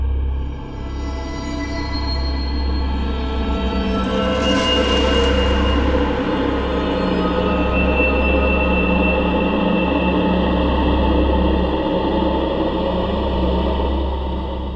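A train rumbles steadily along the rails, with a continuous low mechanical drone and rhythmic clatter of wheels, loud throughout, with no voices.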